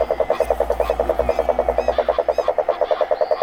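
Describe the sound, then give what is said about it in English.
Frogs, lined up around the edge catching mosquitoes, croak in a steady, rapid pulsing trill that runs without a break, fairly loud, with a faint low hum underneath and no voices. “Frogs lined up getting mosquitoes around the edge of the thing.”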